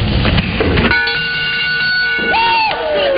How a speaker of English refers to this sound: Look, another player has rung the bell. That means he did his personal best.